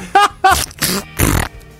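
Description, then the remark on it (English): A loud burp, let out while the speaker is talking, breaks into a series of short sputtering, fart-like bursts: two voiced croaks followed by two rougher, breathier blasts over about two seconds. “Is North Korea one of those things where I talked and I farted out of my mouth? Did you hear that?”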